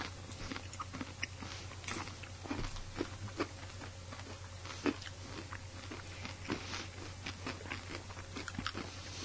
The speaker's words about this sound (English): Hey, everybody, you got your bag at home? Go ahead and chew along with us. So these are honey nut.